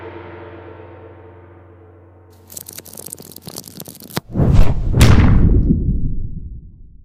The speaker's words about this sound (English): Okay, everyone. The end of episode gong, and what sounds weirdly like a heavy tome slamming shut, that seems ominous, means it's time to roll the credits.